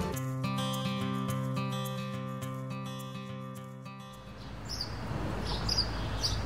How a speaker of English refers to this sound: This is how all our cities sound right now. The light sound of birdsong has become more audible as the roar of cars dulls to a faint hum.